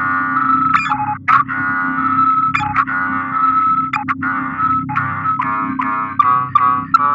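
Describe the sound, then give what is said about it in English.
A pieced-together five-part randomized electronic sound clip broadcast by an X-boat as an encryption key: buzzy, harmonic synthetic tones that jump abruptly between segments with glitchy clicks at each change, played loudly over a steady low hum, with no talking. “Putting together the five-part randomized sound clip assigned when I was stationed here.”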